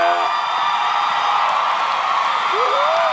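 An audience applauds in a dense, steady wash of clapping with mingled cheers, and a single rising whoop cuts through near the end.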